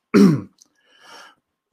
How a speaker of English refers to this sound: And it's good that I keep coughing and clearing my throat on mic too.